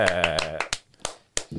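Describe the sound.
A short voiced sound gives way to four sharp hand claps, loud and crisp, spaced unevenly with brief quiet gaps between them.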